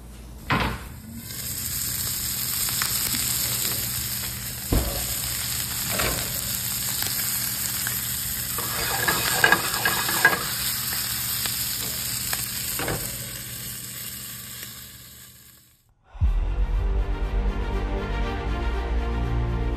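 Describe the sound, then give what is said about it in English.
Food sizzles and crackles steadily in a frying pan, with a few sharp clicks and clunks like stirring, then the sizzle abruptly cuts off and a low, droning hum takes over. “So we're going to cook it up, and we're going to have a little bit of fried potatoes to go with it, some home fries.”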